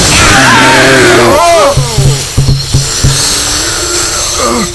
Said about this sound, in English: The suction! From the air cleansing system! It stuck every one of the walls!